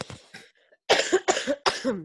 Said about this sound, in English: Sorry, I'm just gonna cough again.